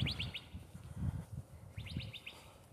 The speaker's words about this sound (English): As you can probably hear, another bird.